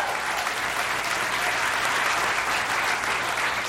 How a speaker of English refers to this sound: I just gave him this stuff right before I went up here, and he's doing a great job. I think a great job. Round of applause.